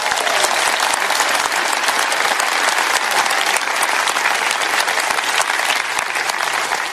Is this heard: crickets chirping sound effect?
no